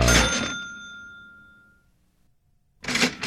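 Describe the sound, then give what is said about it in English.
A cash register rings for a $1.58 billion Mega Millions lottery jackpot win, a bright ding that rattles briefly, then hangs and fades over about a second and a half. After a short silence, a second loud clattering burst begins. “I mean, didn't we decide that it was going to take more than one cash register?”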